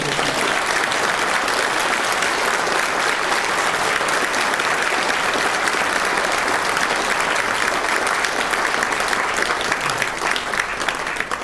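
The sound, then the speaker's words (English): Steady applause from a church audience giving a round of applause in gratitude fills the whole stretch, a dense, even clatter of many hands clapping at once with no pauses and no voices standing out. “So could we just give them a round of applause, just to express our gratitude.”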